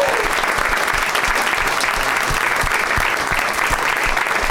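A steady round of applause from a small group for everybody who took part, dense and continuous clapping at a fairly loud level, with scattered sharper claps standing out.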